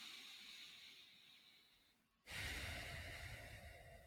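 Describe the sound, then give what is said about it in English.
Deep breathing through the nose with hands on the sides of the ribs: a long airy inhale, a brief pause, then a louder, rushing exhale with a hissing edge. No one speaks. “So bring your hands on the side of the ribs and just take a few nose breaths.”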